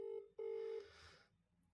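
A phone's ringback tone sounds through the line as a call is placed to the caller's mother: a steady low double burst, two short beeps with a tiny gap, clear and fairly loud, then fading into quiet line hiss.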